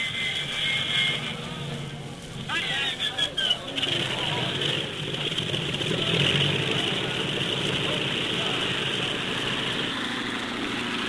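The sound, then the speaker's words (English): An airplane engine runs steadily the whole time, a loud droning roar that never lets up. Brief muffled voices surface early on beneath it. “I'll stop the engine while you get into a parachute.”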